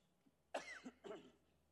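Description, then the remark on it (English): A man coughs and clears his throat: two short, rough bursts about half a second apart, with no talking around them. “I'll clear my throat in a moment.”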